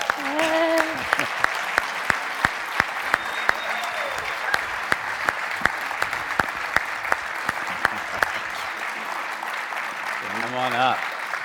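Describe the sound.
An audience across two campuses stands and applauds steadily for about eleven seconds as a couple comes up on the stage, a dense wash of clapping with sharp individual claps standing out, a few cheers and a whistle rising above it, voices calling out near the end.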